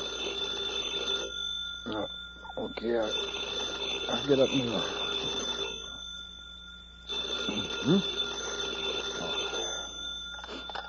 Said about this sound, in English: At 3 o'clock that morning, FBI Special Agent … was asleep at home when the phone beside his pillow suddenly went off.